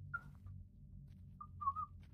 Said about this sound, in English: At first, it just sounds like static, like it was left on, like the microphone was left on. And then you hear a little bit of whistling.